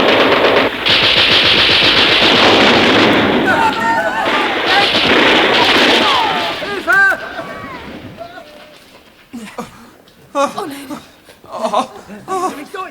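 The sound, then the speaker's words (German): Rapid bursts of loud automatic gunfire from a Kalashnikov, fired by a woman at an armored glass pane in a tunnel with a great white shark behind it, rattle for several seconds, with shouting voices over the din. Then the shooting stops and excited voices continue with scattered cries. “Sie zielt gegen die Panzerglasscheibe.”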